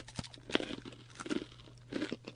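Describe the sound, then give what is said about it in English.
Crisp crunching of someone chewing a crunchy seaweed protein bite, irregular bites and chews repeating over a couple of seconds with no talking. “This one tastes a lot more like seaweed, but crunchy seaweed.”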